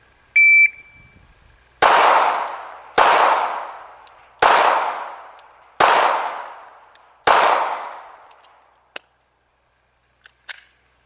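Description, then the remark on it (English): A shot timer's short electronic beep sounds, then five loud, sharp gunshots ring out at a steady pace, with splits of 1.47 seconds, at a second target in a practical accuracy shooting drill, each trailing a brief reverberant decay, followed by a couple of faint clicks. “All right, now let's go to section D 5 shots on the second target for practical accuracy.”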